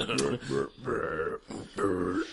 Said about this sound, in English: Oh, yeah. Burps all the way down, ladies and gentlemen.